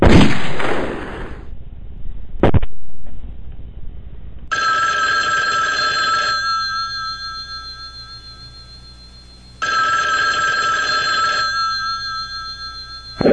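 A telephone bell rings twice before an answering machine picks up, each ring a loud, steady metallic trill lasting about two seconds with a pause between, after a sharp bang and a brief burst of noise.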